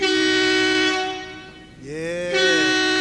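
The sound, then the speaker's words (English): A loud, sustained air horn blast with rich harmonic overtones, a brief dip in the middle and then a second bending, wavering horn tone that rises back to full strength. “Get that air horn one time for King Born, man.”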